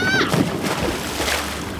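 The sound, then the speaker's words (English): A short yelp cuts off as a person is tipped from a boat into a lake, followed by a steady rush of churning, sloshing water for the rest of the moment. “jumps overboard and swims underneath the boat and tips me into the lake.”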